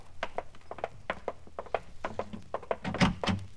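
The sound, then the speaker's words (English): Light, quick footsteps cross a room, then a front door is opened with a solid clunk and rattle near the end; no one speaks. “Now, listen, you got to answer that front door.”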